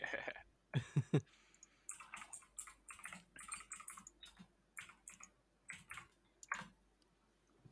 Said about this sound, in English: I'm here, looking. Hear my keyboard clicking.